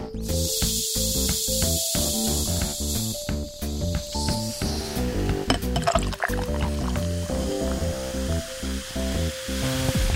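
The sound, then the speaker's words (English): A freshly opened bottle of homemade soda, carbonated with champagne yeast, fizzes with a steady, bright hiss that carries through the whole stretch, fairly loud, with a rhythmic musical tune playing underneath. “It's so fizzy. The ginger ale was not this fizzy.”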